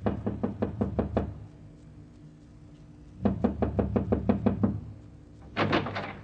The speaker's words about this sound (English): If you won't knock on that door, I will.